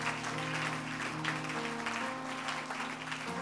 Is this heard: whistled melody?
no